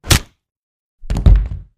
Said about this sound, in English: It's the poke in the jaw I gave you that knocked you out